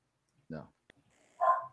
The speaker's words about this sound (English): Your dogs are barking.